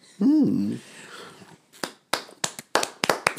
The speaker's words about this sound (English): Snaps. Snaps and claps.